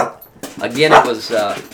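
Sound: dog barking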